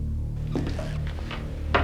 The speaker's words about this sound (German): Am Ende des Flurs stand eine Tür halb auf. Hallo? Tim öffnete die Tür.